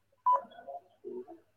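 Telephone beeps over a call-in show phone line: one sharp, loud tone, then a trailing run of softer, warbling electronic tones and a second short cluster of beeps, with no voices.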